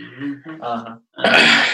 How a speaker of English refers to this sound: Just trying to clear my throat. That's all I'm doing.